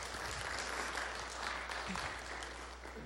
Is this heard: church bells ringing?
no